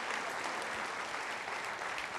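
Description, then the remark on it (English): A crowd applauds steadily, many hands clapping in a dense, even wash of sound that holds at a consistent level for a couple of seconds with no voices on top. “Can y'all give them a giant round of applause?”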